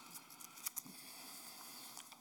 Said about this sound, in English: So I'm going to shuffle some papers here for a minute, so bear with me.